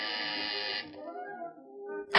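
A harsh, steady electric buzzer at the door of apartment 9G, pressed with a finger, sounds for under a second, then cuts off, leaving a fading ringing tone before a short burst of noise at the end.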